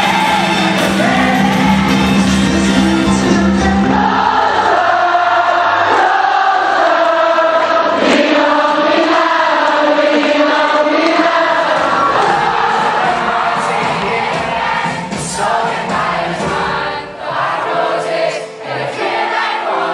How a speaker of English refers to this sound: So it's when a group sings. And this specifically refers to at a concert, when the artist is performing on stage and the entire crowd sings along in unison, word by word, rhythm by rhythm, in perfect harmony with the song.